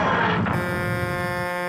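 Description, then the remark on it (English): A brief rush of noise gives way to a loud, steady horn blast from an articulated lorry hovering right overhead, buzzy and rich in overtones, holding one pitch for over a second with no voices. “Oh, what a distinctive horn.”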